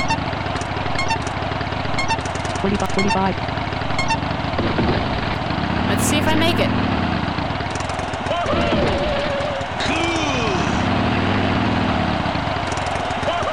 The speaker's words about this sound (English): Start your number 2 Harley.